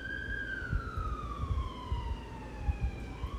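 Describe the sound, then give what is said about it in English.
A siren wails outdoors, its tone sliding slowly downward as the vehicle moves past, with steady low traffic rumble underneath and no talking. “And we got some sirens out here. I'm going to let the sirens pass, you know.”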